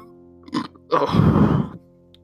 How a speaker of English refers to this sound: Excuse me, I just burped in front of the mic.